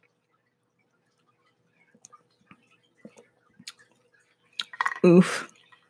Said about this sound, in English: Let me drink some water. Hold on.